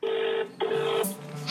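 An outgoing phone call rings out: two steady electronic ring tones close together, separated by a short pause, clear and fairly loud with no voices.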